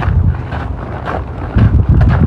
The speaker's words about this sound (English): Alright. Hear the snow crunching there.